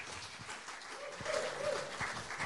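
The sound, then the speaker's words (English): A crowd applauds as a speaker comes forward to talk about the Alpha program, a dense, steady wash of clapping that holds at a moderate level throughout, with no one speaking over it. “Yes, you may applaud.”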